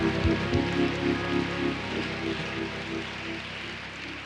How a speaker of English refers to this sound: I think we ought to give all the saints of God a big hand right now. Come on, clap like you're thankful for the house of God and the people of God, the saints of God.